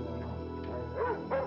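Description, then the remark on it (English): A guard dog gives two short, sharp barks about a third of a second apart, moderately loud, over a steady low background hum with no talking. “They purchase mace, guns, outdoor lights, and guard dogs as their way of ensuring their safety.”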